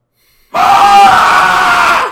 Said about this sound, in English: Ah! Right? You got to let it out. Did that scare you? Yeah, you just scream in my apartment.